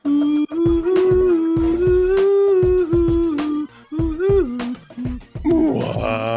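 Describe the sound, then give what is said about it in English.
Whale sounds: long, loud moaning calls held at a low pitch with slight bends and rising swoops, broken by frequent sharp knocking clicks, ending in a buzzy, wavering cry. “Well, now that we've put some earworms and somewhat bizarre whale sounds into your head”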